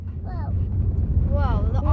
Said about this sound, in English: There are so many cars, you guys. Seriously, I think every car in Moncton is here. Every tractor in Moncton is here. Every gator in Moncton is here. Every ATV in Moncton is here.